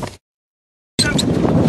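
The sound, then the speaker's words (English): A loud, rushing roar of wind and motor noise as a boat races across the ocean after a deer swimming in the water, heard in two bursts split by a short gap of silence. “So they jumped into their boat and raced after it.”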